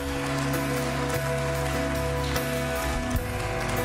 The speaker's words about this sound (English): Come on, I want us to praise the Lord and give him a hand clap of praise in this place.